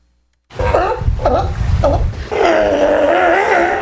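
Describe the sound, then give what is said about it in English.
Sea lions sickened by a toxic algae bloom along the Southern California coast call loudly: three short, rough barking grunts in quick succession, then one long, wavering, moaning bellow that holds steady to the end. No one speaks. “Those are the sounds of some of the growing number of sea lions who've gotten sick from a toxic algae bloom along the Southern California coast.”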